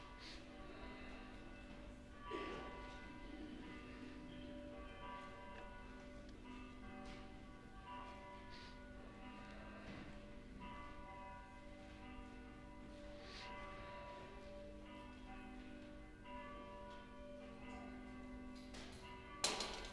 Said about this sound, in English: Please stand and the bells will call us to worship.